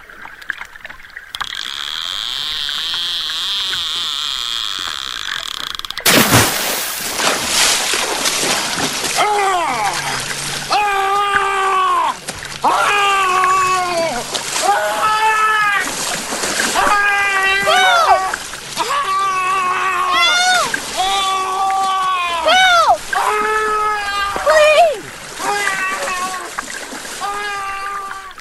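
A steady watery rush gives way to one loud, sudden splash, followed by a man yelling and crying out over and over in panic, close up, with faint sloshing underneath.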